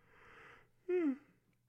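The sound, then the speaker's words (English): A single sneeze: a breathy intake, then a short, sharp voiced burst whose pitch drops quickly before fading to quiet. “Bless you. Excuse me.”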